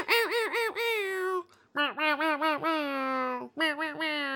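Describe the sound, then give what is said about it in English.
A voice imitates an air horn with loud, nasal blasts: a quick stuttering series, a long held wail, then another burst of short honks, with the pitch wobbling throughout. “Air horn noise.”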